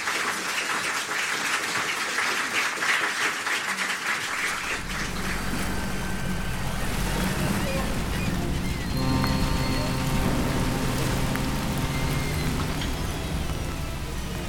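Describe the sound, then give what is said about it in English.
Steady rain falls on the coast of England, hissing loudly and continuously, joined after a few seconds by a low rumbling drone and faint sustained tones that swell beneath the downpour. “It was still raining when I reached the coast of England.”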